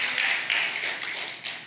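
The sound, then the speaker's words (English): A church audience claps together during a service, producing a steady, dense patter of many hands that swells slightly in a few places and holds for under two seconds, with no voices over it. “Yeah, that is a good place to clap.”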